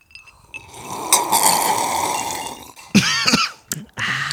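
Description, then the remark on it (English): Someone slurps a Whiskey Winky cocktail: a long, noisy, bubbly draw of liquid followed by a few shorter sputtering sips and a throaty swallow, with no talking. “Let's do a slurp.”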